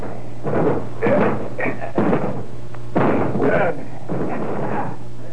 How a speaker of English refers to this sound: I don't like it. All right, Sergeant, we'll break the door down.